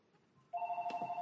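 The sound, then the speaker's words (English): A landline telephone starts ringing partway through, a loud electronic trill with a rapid warbling pulse, sounding alone without any voices. “Corey's phone is ringing, folks.”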